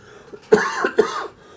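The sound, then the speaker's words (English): Two quick, harsh coughs in close succession, fairly loud, each a sharp burst that trails off briefly before going quiet. “Excuse me, I got a cough.”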